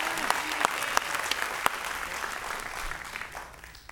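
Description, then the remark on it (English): A large crowd claps loudly and steadily, a dense wash of applause with a few sharper claps standing out, gradually tapering off toward the end, as the audience gives God a big hand clap. “Now whistle, give God a big hand clap, and shout amen if you hear me.”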